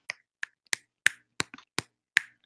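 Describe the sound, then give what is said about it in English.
About nine crisp finger snaps in quick succession, sharp with a fairly steady beat, one pair landing almost together. No one speaks. “Everyone, quickly, snap clap.”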